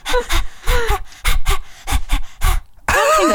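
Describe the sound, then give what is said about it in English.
A person imitates panting with about ten quick, breathy huffs in a steady rhythm, fairly loud, ending in a brief voiced, wavering sound. “Panting just sounds really it doesn't work.”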